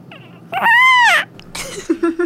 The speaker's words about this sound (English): Was that a bird? That was a baby.